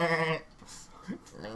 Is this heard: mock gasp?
no